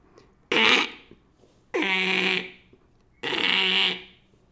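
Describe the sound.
A person imitates a squirrel with three raspy, buzzing bursts, each lasting about half a second, separated by short pauses. The calls are fairly loud and harsh, with no talking.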